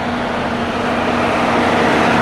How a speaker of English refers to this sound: Chemical truck. A rumbling truck brings her back to the present,